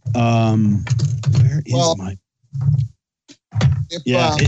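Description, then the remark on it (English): Metal challenge coins, collected from all over the world, clatter and clink as they are dropped and rummaged through, a series of sharp taps and rattles mixed in with a person's voice. “Dropping them all. I got them everywhere.”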